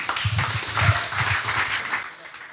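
Audience applause: a dense, steady wash of many hands clapping at once, fairly loud and even throughout, tapering off slightly at the very end.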